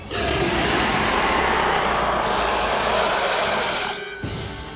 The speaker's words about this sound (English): Smoke cleared. A beastly roar cut through the fog of battle.